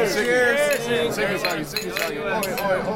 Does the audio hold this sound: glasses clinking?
yes